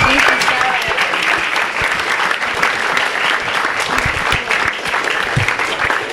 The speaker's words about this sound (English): That was totally amazing, and I think it deserves another big round of applause.